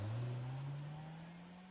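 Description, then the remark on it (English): A car engine revs hard and climbs in pitch as the car drives off from a street in the morning with its wheels spinning, loud at first and easing slightly as it pulls off, with no voices. “Molly drives off with the wheels spinning.”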